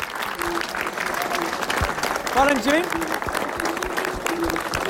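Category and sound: crowd, audience clapping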